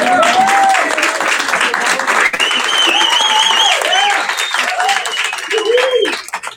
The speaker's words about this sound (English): So the applause is to you, right?